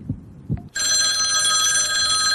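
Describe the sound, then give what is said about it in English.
Two soft low thumps, then a loud telephone bell starts ringing and keeps going steadily until the end, with no voices. “All right, let's go to the phones and see who's out there.”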